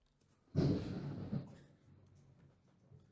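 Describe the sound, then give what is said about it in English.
A sudden rumble of thunder bursts in, loud and broad, holding for about a second with a second swell before fading into a low, lingering grumble. No one speaks. “Did y'all hear that thunder?”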